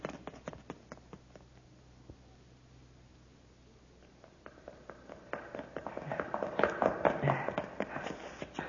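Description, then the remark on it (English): Rapid footsteps clatter up a flight of stairs in a building, a quick uneven run of hard taps that grows louder and busier toward the end, as several people hurry up the stairs. “There they go, sir. Up the stairs.”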